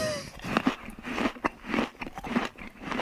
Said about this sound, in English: We're still using these chewing sound drops, which you know I don't approve of, but that's fine. Well, it's because it's the lunch. I get why.